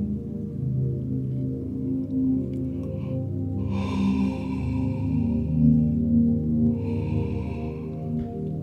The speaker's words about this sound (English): I just had a double yawn there. Oh, that's good stuff. And then I had to crack my back, sorry.